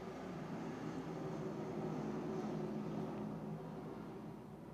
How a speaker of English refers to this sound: Let's just hold for that plane.